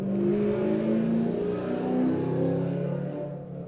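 A loud car engine revs and growls steadily as it rolls slowly past the window at about 20 miles per hour, the rumbling tone rising and shifting for several seconds before easing slightly at the end.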